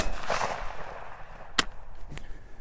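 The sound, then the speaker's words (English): Two sharp shotgun blasts ring out about half a second apart, fired at a bird flushed in front of a pointing dog during a bird-dog hunt, the first louder than the second, following a brief rushing, fluttery noise at the start. “We had two shells.”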